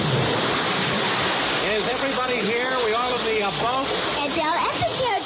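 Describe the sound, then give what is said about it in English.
Steady rushing ocean surf and splashing water where a single-engine biplane fell into the ocean fills the whole stretch, loud, with voices talking over it from about halfway through. “Well, in our last very exciting episode, Hollywood director Daryl Fanning's company of players was en route to Africa for the filming of King Chicken when their single-engine biplane stopped in midair and fell into the ocean.”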